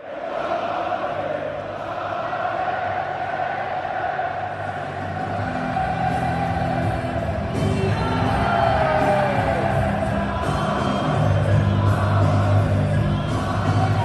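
About 50,000 Irish fans sing together in unison at the Stade de France in Paris after the final whistle of Ireland's 13-8 win over South Africa, a dense, loud roar of voices holding a steady, swelling melody with shouts and whoops mixed in throughout.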